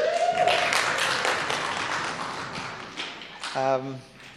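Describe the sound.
A church audience applauds during a service, welcoming a reader who is coming up to read Luke chapter 5, verses 1 to 11. The steady, dense clapping gradually thins out over a few seconds, and a voice briefly sounds as the applause dies down.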